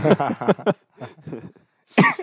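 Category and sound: human body sound, cough into the microphone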